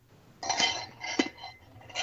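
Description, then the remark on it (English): A stainless steel water cup that keeps drinks cold clinks a few times, with bright metallic rings: a longer jangle first, then a sharp knock and a final chime, over quiet background hiss. “It's my water cup. It's one of those stainless steel ones that keeps it cold.”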